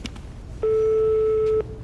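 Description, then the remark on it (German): A single steady ringback tone, a pure mid-pitched hum lasting about one second, sounds over faint background noise as a returned phone call rings out on the line. “Psst, es klingelt.”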